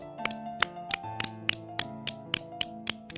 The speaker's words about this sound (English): Okay, kids. Now we'll clap with three fingers. Index finger, middle finger and the ring finger. The finger right next to the middle finger. We'll clap with these three fingers on the left palm. Let's start.